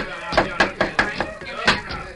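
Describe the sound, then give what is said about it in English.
A hammer nails a board against a ranch house door to barricade it, about seven or eight sharp wooden blows in a quick, uneven rhythm, each strike loud and punchy with a brief ringing decay. “Boys, nail that board against the door. Hurry!”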